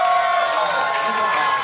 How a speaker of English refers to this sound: How many of you by round of applause have combo tickets for the second show?